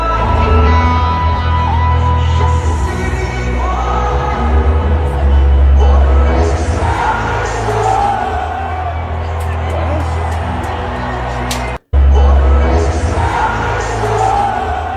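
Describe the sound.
A loud concert crowd in San Francisco, recorded on a fan's camera, sings along en masse over booming music, with cheers and whoops rising through the dense wash of voices; the sound briefly cuts out near the end before resuming.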